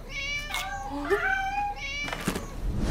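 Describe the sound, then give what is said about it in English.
Cats meow in drawn-out, overlapping calls, a long wavering meow followed by a shorter one, fairly loud with no talking. “It's go time, kitty cats!”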